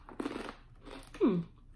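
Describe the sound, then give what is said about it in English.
Crisp crunching of rolled, chili and lime flavored corn tortilla chips, a few brittle bites and chews in quick succession, followed by a brief tonal sound near the end. “Very crunchy.”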